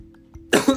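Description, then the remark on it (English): A sharp cough breaks a brief hush, followed almost immediately by a second rough burst, two quick hacking coughs with no talking. “After I cough.”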